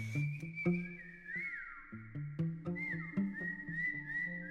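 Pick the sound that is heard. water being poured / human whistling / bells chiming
human whistling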